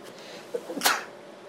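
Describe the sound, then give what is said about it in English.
A single sharp sneeze bursts out after a brief inhaling catch, loud against the quiet, then fades quickly with no talking. “Oh, I've got to sneeze.”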